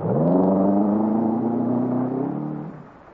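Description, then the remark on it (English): A car engine revs hard during a chase, holding a loud, steady roar for a couple of seconds before the pitch drops and the sound fades as the car pulls away. No voices. “I drive fast enough to keep out of range, but not fast enough to lose them.”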